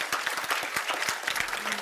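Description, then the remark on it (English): An audience claps steadily, many hands striking in a dense, crisp patter that holds at an even loudness for a couple of seconds without any voices over it. “I want you to clap your hands and say amen.”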